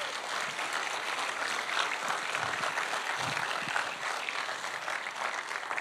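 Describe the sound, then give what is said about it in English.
A steady round of applause from a crowd as a young man is invited up to the stage, dense continuous clapping at an even loudness throughout, with no speech over it. “We're going to give you a huge round of applause as he comes up.”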